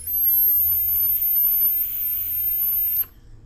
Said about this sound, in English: When I turn this down to the airflow that I actually want, it whistles like crazy. Do you hear that?